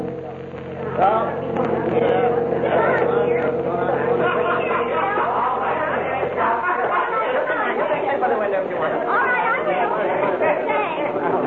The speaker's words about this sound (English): Come on, kid. There's our bus pulling in.